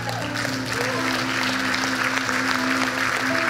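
An audience claps in a dense, steady wash of applause that lasts the whole clip, over a sustained, low keyboard-like chord.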